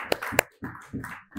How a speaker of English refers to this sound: a big round of applause.